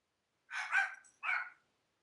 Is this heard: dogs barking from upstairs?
yes